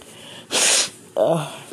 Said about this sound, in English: Sorry about the sniffling and whatnot. It's been kind of cold here. And now it's starting to heat up. And I guess now my body wants to react to the fact that it was cold once upon a time.